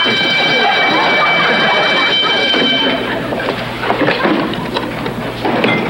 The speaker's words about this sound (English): What was that? The burglar alarm, Mr. Foley, just running a check on our security system.